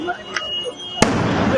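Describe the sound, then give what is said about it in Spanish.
A small pop, then a loud, sharp explosion that gives way to a rough, sustained roar of noise, with indistinct voices murmuring in the background, from a video of explosions in Quito. “Vamos a empezar con el video de la detención, con el video de las explosiones en Quito, el video número 5, Chema.”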